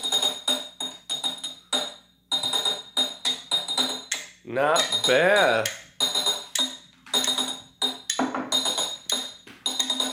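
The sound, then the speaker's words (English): Drinking glasses clink together in a toast, with short bright taps mixed in among voices talking and a brief burst of animated vocal sound. “Alright, that's an annoying little bit, but horrible clink. I don't think these are made to be cheered with.”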